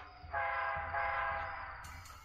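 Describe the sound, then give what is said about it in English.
The horn of an approaching train blares in two long, overlapping blasts, a loud, harsh chord of steady tones over a low rumble, with no one speaking. “My car stalled on the train tracks.”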